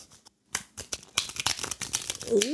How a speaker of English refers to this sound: Ooh. That was a good shuffle.